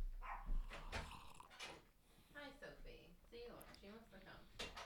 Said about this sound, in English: Did you hear that? Yeah. What's she barking at? She probably wants people.